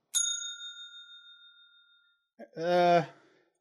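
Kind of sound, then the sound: signal or alarm, spoiler warning bell ringing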